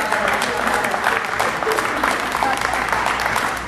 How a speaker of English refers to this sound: Oh, clap if you will now, audience, but there's a twist.